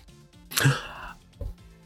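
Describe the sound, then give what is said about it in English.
A single raspy cough, almost like a throat clear, bursts out over near silence, followed a moment later by a softer, low rumble. “Why don't you cough a little louder?”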